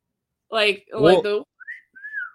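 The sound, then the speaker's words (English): After a brief burst of voices, a two-note wolf whistle rings out: a short rising whistle followed by a longer falling one, clear, in a playful cartoon style. “That classic cartoon whistle.”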